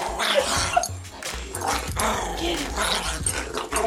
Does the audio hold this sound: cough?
no